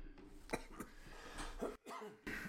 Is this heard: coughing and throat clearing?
yes